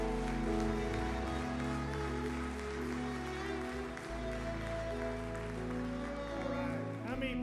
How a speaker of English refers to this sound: Come on and give the Lord a hand clap of praise.